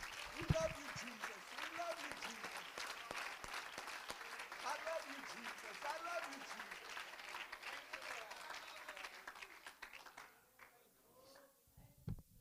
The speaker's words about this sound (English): Let's clap our hands to the Lord and thank him.